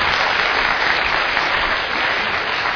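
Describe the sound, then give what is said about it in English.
Steady, loud applause from a church audience welcoming a guest speaker, a dense wash of clapping that holds at an even level for a few seconds without any voices over it. “Let's give him a warm cornerstone welcome.”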